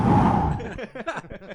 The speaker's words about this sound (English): Sorry, everyone who just got that big spike of breathing in. Now we can see the. What is that called? The track? What would that be called? Sound waves. The sound waves. Yeah, it's a huge one. Sorry.